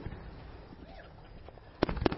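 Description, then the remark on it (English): Celebratory fireworks going off in celebration of God's Word: faint scattered crackling, then two loud, sharp bangs in quick succession near the end, with no voices. “There's a contrast here because there's another type of explosions happening in the land.”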